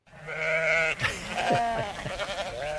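Goats bleat loudly and close by, one long wavering cry followed by a tumble of overlapping, quavering calls from several animals, with no talking.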